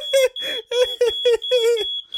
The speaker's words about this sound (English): The fucking fire alarm's going off.